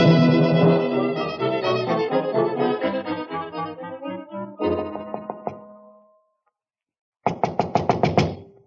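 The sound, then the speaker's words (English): Music plays and fades to silence, then a quick run of about seven sharp, evenly spaced knocks raps on a door, fairly loud, with no talking. “Looks like Mr. Dagan's not receiving. Try the door.”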